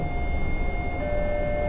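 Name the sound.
train running on tracks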